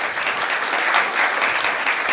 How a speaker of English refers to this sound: Hey, can we get a round of applause for that?